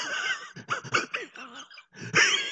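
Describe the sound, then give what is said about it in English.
A person imitates the wheezy, snickering laugh of Muttley, Dirk Dastardly's cartoon dog: a string of raspy, breathy bursts, a brief pause, then one more loud wheezing burst. “Muttley was like Dirk Dastardly's dog who like would laugh and go like...”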